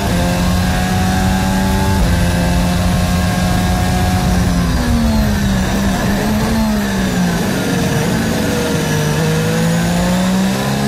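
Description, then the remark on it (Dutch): A Formula 1 engine screams, heard onboard Lewis Hamilton's car, its pitch climbing then dropping sharply several times as it shifts up from second gear through third, fourth and fifth, loud and continuous with no talking. “we zijn aan boord bij de Engelsman. Voor ons zijn teamgenoot George Russell, daarvoor Kevin Magnussen. Tweede versnelling. 3, 4, 5.”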